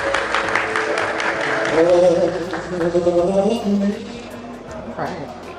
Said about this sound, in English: As we wait for dinner to be served, we are fortunate enough to hear a live acapella performance.